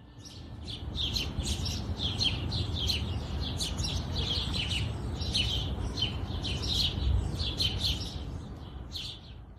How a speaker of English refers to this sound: From the ripple sounds of river, to the chirping of morning birds,